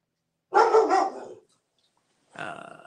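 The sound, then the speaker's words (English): A dog barks and growls in a long, rough burst, then goes quiet before a second shorter growling bark follows, loud with no one talking. “Our dog doesn't like that, apparently.”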